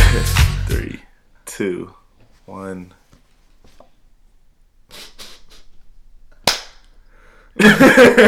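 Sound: hand clap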